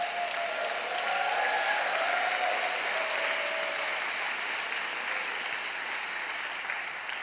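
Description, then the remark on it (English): An audience applauds steadily for several seconds, a dense wash of many hands clapping at once, holding at a fairly even loudness and easing slightly toward the end, with no one speaking. “I don't say that to get applause.”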